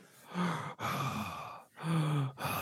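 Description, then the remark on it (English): Heavy, loud breathing of a man in the next room, on the other side of a wall: several long, rasping breaths drawn in and pushed out in a steady rhythm with brief pauses between them, and no talking. “Yeah, he's in the next room, like on the other side of this wall, but he breathes really heavy.”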